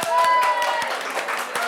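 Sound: audience clapping in vote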